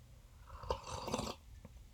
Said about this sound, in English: I had to do the sip for sound effect because I'm drinking the tea. That's the tea.